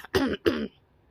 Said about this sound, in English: He coughs.